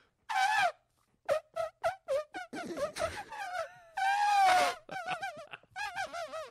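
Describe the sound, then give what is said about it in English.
A voice imitates an elephant washing windows with Windex: loud, wavering trumpet-like wails mixed with quick squeaky bursts and warbles, including one long sustained whine, with no words spoken. “What would an elephant washing windows with Windex sound like?”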